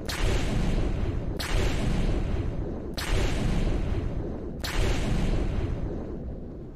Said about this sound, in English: Where's my explosion button at? I know I have an explosion button, damn it. Here it is. Boom.